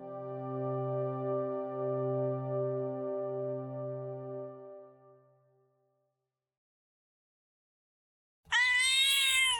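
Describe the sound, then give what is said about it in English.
A single loud cat meow bursts out near the end, following a sustained, fading harmonic drone and a few seconds of silence. “The Black Cat has stories to tell.”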